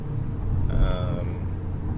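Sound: car interior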